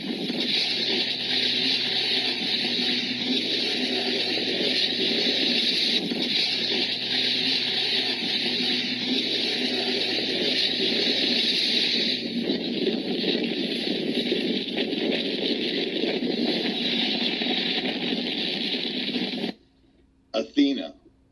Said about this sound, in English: And a lot of times you're going to also, I'm going to play a lot of these video clips, you're going to hear a hum with that's associated with this. It's a kind of like a low hum as the beam's coming down and doing its damage.